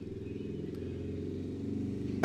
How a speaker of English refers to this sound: I hear the motorcycle.